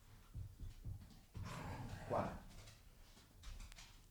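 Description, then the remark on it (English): Puppies making noises, with a short burst of whining or yelping around the middle and softer thumps and rustling before and after. “I may have to take a break and run the dogs outside.”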